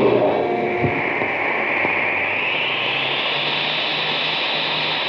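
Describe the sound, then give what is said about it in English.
The supercharged engine of a cosmic surface car filled with super fuel roars steadily and loudly for several seconds, a harsh, noisy, distorted drone whose whine creeps slightly higher in pitch as it keeps revving. “Boy, that cosmic surface car is really roaring now.”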